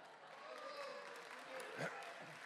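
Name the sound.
audience clapping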